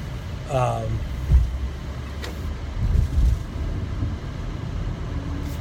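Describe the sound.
Low, steady road rumble of traffic with a car passing, a brief rising engine whine early on, and faint indistinct voices mixed into the background noise.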